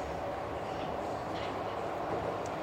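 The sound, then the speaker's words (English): A train rolls through an underground tunnel beneath the city of Prague with a steady roar and deep rumble that never lets up, broad and even throughout, with no voices. “You can see lights from the other trains on the other side of the track.”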